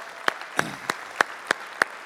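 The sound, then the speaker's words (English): Audience applause for first-time guests, in the form of six sharp, evenly spaced claps, beating a steady rhythm about three per second, fairly loud with no talking. “Big applause for our first-time guest today.”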